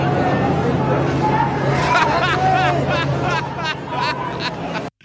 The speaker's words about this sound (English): The best part about this is listen to the reaction this guy gets from the crowd.